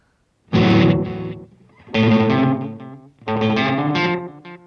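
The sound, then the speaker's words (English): Three loud, heavily processed guitar notes from an H9 effects unit's seagulls effect swell and cry out in turn, like seagull calls, each lasting about a second with short gaps between them and no talking. “Or the seagulls, I think maybe they're called.”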